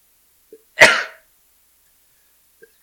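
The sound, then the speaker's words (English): A single harsh, explosive cough bursts out from a person gagging after eating a spicy chip, sounding strained, with a couple of tiny breathy sounds around it and no talking. “He's in tears. He's gagging.”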